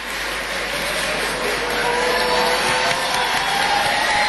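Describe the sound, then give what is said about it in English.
A crowd applauds at a university graduation ceremony at Newcastle University in the UK as a man proposes on bended knee, many hands clapping in a dense, steady wash of sound that holds at a loud, even level for several seconds with no speech. “There's some clapping, and then there's the realization that someone is on bended knee.”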